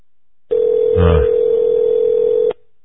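A steady telephone dial tone hums for about two seconds as a call is placed from Chicago back to Alan Watt in Canada. The tone is clear, with a brief muffled thump partway through; no one speaks.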